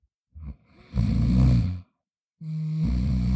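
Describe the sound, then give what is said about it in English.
A voice imitates snoring from someone behind a closed door: a short throaty catch followed by two long, rumbling, drawn-out snores with a pause between them, moderately loud, with no other sounds. “There was no reply except a faint snore.”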